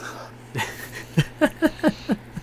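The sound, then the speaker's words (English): Heavy, rhythmic breathing, a quick run of about six loud, voiced huffs following a softer breath, like someone panting hard. No talking. “Was that some heavy breathing that I heard there?”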